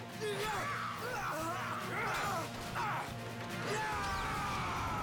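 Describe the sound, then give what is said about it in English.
A loud, sustained explosion from a Power Rangers action scene, with dense rumbling and crashing debris that continue for several seconds, overlaid by swooping, whistling tones and scattered cries. “Unnecessary wire work and a giant explosion.”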